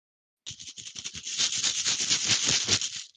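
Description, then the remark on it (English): Dice rattle and clatter inside a shaken bag, starting with a few distinct clicks and building into a dense, continuous jangling for about two and a half seconds, with no voices. “Do you want to just give your bag a shake?”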